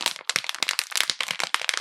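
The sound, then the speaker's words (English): Dense, crackly crinkling of a plastic water bottle being squeezed for ASMR, a rapid irregular stream of bright, sharp crunches that keeps going for the whole stretch without pause, with no voices. “From Metal Nerdery Water Bottle ASMR.”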